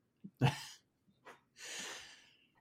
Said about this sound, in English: I noticed you silently muted yourself and coughed. Yeah. During BG's.